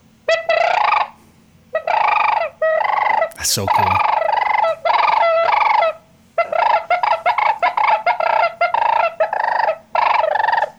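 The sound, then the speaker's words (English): A loud imitation of a sandhill crane's rolling, trumpeting call, blown on a crane call in repeated bursts of about a second each, with a brief spoken comment partway through. “Are you gonna run that crane call?”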